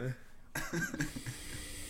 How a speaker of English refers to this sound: Hey, how does this pick up on breathing? Yeah, slightly.